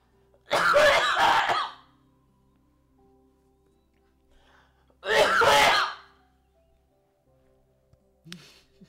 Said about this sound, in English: Bless you